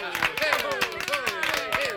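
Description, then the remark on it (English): A short burst of canned applause from an applause sound effect: quick, steady clapping mixed with cheering voices, continuous for about two seconds. “We have a little applause thingy on there that we can just give him for, a fifth grade.”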